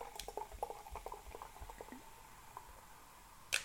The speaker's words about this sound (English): Oh, the bubbles? Now that's some ASMR.